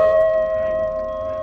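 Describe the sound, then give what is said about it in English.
A loud, sustained werewolf howl holds one steady, tonal pitch for about a second and a half, unaccompanied, with no talking over it, from a creature preying on a horse. “No, it's a wolf. No, it's not a wolf. That's not a wolf.”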